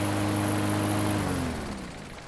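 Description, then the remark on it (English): A boat engine drones steadily on the open ocean, then its pitch sags and it sputters out, leaving only a faint background hiss. No one speaks. “I don't want to alarm you all, but the engine's just died.”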